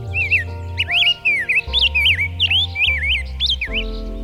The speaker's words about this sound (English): It was a rose-breasted grosbeak.